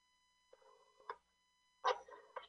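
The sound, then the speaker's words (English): Two short bursts of electronic telephone keypad tones as a man dials a phone number to call someone he thinks should pay him a ransom, with a steady faint hum underneath and no talking. “Really what he's doing now is he's calling who he thinks, you know, should pay him a rent, the ransom.”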